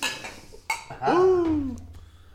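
Beer glasses clink together in a toast, a sharp bright knock with a ringing shimmer. It is followed by a drawn-out voiced sound that rises and falls in pitch.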